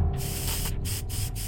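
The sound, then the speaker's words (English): A spray bottle of Sillet Bang Black Mold Remover, a bleach spray, hisses out several quick bursts in a row aimed at black mold, each a sharp airy spritz, with a faint low hum in the background. “Doug pointed the nozzle and directed the spray towards the offending vortex.”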